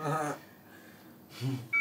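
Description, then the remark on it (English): A mobile phone gives one short, high electronic beep near the end, crisp, following a couple of low, whiny vocal sounds with no clear speech. “Oh no, there goes the phone.”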